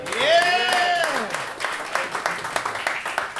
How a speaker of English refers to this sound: And also, will you give a massive round of applause to our cameraman for the night and our film director, Mr. Sean Casey, right over here.